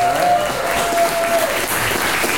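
An audience claps steadily in answer to being asked to clap if they know who Michael Malice is, a dense, loud wash of many hands with no clear rhythm, sustained throughout, with a faint whistle-like tone briefly riding over it.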